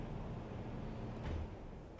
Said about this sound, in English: You probably just heard that big old blender in the background. That was my air conditioning. It's probably not best to do your show right by a blasting air conditioning unit that's like 48 years old.